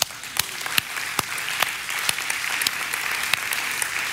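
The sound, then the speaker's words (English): An audience claps together in steady applause, a dense wash of many hands with a few sharper individual claps standing out, sustained evenly for several seconds with no talking. “And let's just give the Lord a hand clap.”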